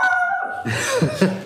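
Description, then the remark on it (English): A dog named Alfie, keeping watch at the front window of a house, barks a few quick rough barks after a brief high whining tone, with no one talking. “we have a dog that's keeping watch at the front window, so...”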